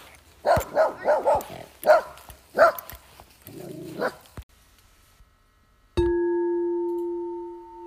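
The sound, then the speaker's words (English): A puppy on a hiking trail barks on meeting another hiker's dog, in a quick, excited burst of several sharp yaps ending with a lower whining grumble; after a short silence, a steady electronic tone sounds and fades. “So I think I'm going to leave the dog barking at the end of that segment because that was like perfect.”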